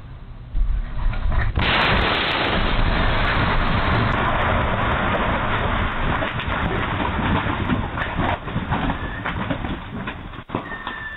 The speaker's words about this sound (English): I want you to see and hear the explosion yourself. Now, keep in mind, this explosion is actually off camera. It's very hard to miss.